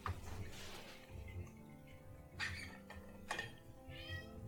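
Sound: cat meowing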